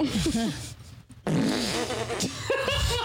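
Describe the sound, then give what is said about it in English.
A voice makes several wet, sputtering raspberry noises with the mouth imitating farts, with brief gaps between bursts and a short pause near the middle, fairly loud, with some vocal sounds mixed in. “But why do you gotta do the fart noises with that's it?”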